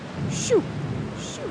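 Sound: rain falling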